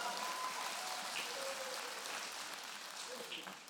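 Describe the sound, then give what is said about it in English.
A church audience claps hands together as praise to God during a sermon, dense, steady applause lasting about four seconds, loud and even throughout, with a few faint voices calling out beneath the clapping before it starts to thin. “If you're excited about it, go and give God a hand clap of praise real quick.”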